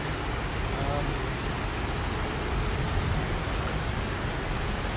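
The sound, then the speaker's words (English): A rushing waterfall, heard from the top of the falls, roars in a steady, dense wash of noise that stays constant and loud for the full five seconds, with no breaks or changes in intensity. “We're at the top of the waterfall, as I'm sure you can hear.”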